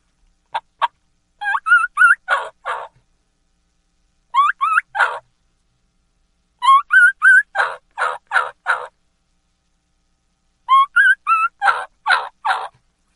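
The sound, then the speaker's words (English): A series of high whistled notes from a turkey call imitating the Jake whistle of a lost young male turkey, rising whistles followed by raspy yelping clucks, repeated in four separate bursts with pauses between, clear with no talking. “and then also a Jake whistle, key-key and call of a lost young gobbler”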